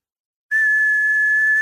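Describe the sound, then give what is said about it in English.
A single steady whistled tone starts abruptly after a moment of silence and holds at one pitch, loud, with no talking. “He said, whoa, I could whistle.”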